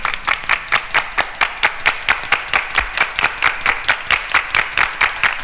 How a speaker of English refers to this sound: Let me see you clap your hands.